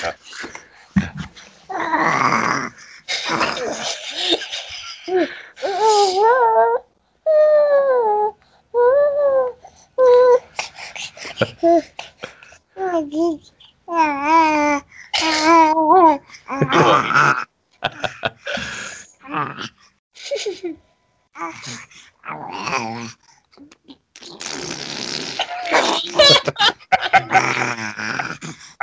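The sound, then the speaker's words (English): A dog whimpers and whines in wavering, high-pitched bursts, broken up by heavy, huffing breaths and low groans. It is fairly loud, with little pause over about half a minute. “Why is he breathing heavy?”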